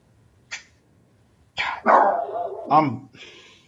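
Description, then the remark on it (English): A dog barks during a show recording: a single sharp bark, a brief pause, then a louder, rougher run of barking that trails off into a few softer yaps. “What is my dog's to bark every time we do a show?”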